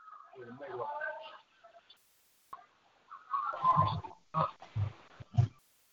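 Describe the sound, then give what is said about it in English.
A garbled voice over a phone line keeps breaking up, with choppy bursts of distorted speech separated by brief dropouts of near silence. “All right, yeah, my phone be going out sometimes, so it's all good.”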